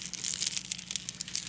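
Rounded river rocks being pulled out of a bag in a pocket: steady crinkly rustling with irregular crunchy bursts and faint clacks over about a second and a half, with no voices.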